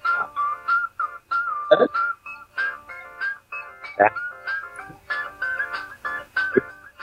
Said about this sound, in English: That's you on the slide whistle.